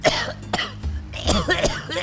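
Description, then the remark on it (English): A person coughs repeatedly after drinking ash-tainted river water, a rapid series of harsh, throaty bursts with brief gasping breaths and some throat clearing between them. “Coughing, my thoughts drifted and my eyes watered.”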